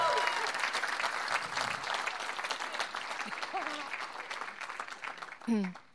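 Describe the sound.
Sustained audience applause for a speaker coming up to give a testimony, a dense, steady patter of many hands clapping at even loudness for several seconds, with a few voices and cheers faintly mixed in before it tapers at the end.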